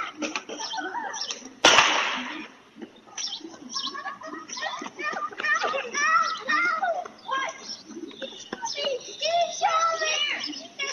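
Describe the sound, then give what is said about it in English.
Children play outdoors on Candlewood Lane on a Saturday afternoon, their high voices chattering and calling back and forth, with a single sharp, loud gunshot cutting through near the start. “You'll see kids playing, hear a gunshot,”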